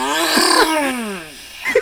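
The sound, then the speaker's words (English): A buzzy fart sound effect glides in pitch as if whizzing past, fades, then swoops back with a short, brighter burst at the end. No one speaks. “It's like, we have this fart sound. Make it sound like the fart is like driving by really quick and then coming back.”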